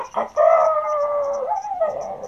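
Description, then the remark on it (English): A rooster crows once, a loud, drawn-out cock-a-doodle-doo that holds steady and then bends in pitch near the end, with no talking over it. “Jump up, rooster. Jump on top of cat.”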